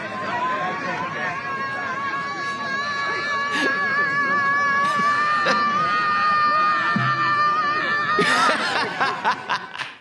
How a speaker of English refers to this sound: You're going to get together and scream at the sky. Yeah, that's going to win. That's going to make you guys win.